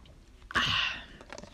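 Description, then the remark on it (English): A single airy slurp as someone sips water, starting with a soft click and trailing off after about half a second, followed by faint mouth noises. “Wait, let me just take a sip of this water because, wait.”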